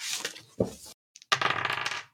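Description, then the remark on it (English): Dice rolled for a game clatter across a hard surface: an initial skittering burst, a brief pause with a couple of light ticks, then a longer rattling tumble. “Oh no, one of my dice is stuck on a point.”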